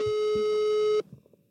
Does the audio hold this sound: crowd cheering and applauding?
no